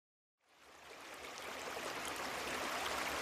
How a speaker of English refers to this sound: Tonight's meditation will help you fall deeply asleep by relaxing your entire body with the sound of the creek behind my cabin in the background.